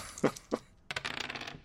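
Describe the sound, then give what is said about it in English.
Two sharp clacks of dice hitting a hard tabletop, then a quick clattering run as they tumble and settle, fairly crisp, with no voices; two dice rerolled during a game, coming up 2 and 14. “Okay, but he does have a single reroll, which I assume he will now use.”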